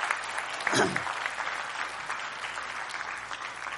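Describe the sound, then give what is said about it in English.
A crowd at a church service claps steadily in a dense, sustained wash of applause, a brief louder burst rising near the start before settling into even, continuous clapping throughout. “Give him another round of applause, if you would, please.”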